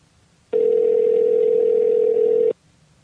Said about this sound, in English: So why don't I dial him up right now